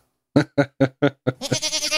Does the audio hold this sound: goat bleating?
yes